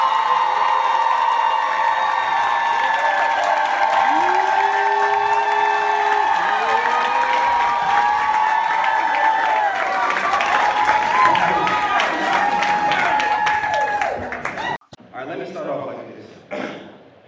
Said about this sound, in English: This is amazing, for real. Yeah. Like, seriously. Clap it up, real. Clap it up.